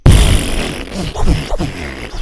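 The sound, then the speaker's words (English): A voice imitates a loud fart, a couple of seconds of buzzy, sputtering noise with low rumbling bursts that rise and fade in uneven pulses. “I mean, I tore it up, man, and it was so loud.”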